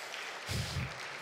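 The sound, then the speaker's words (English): A crowd applauds the Lord Jesus in a steady, noisy wash of clapping that fills the short clip, swelling briefly in the middle with a low rumble. Nobody speaks over it. “Let's applaud the Lord Jesus for that.”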